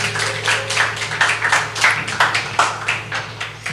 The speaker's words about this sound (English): Can we clap for them as they come up?